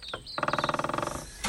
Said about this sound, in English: The morning begins with the Kiwi couple talking, rustling their plastic food bags, and letting the door bang shut over and over. Is it just an oversight, as the sun is not yet up and the four of us TA hikers are still sound asleep?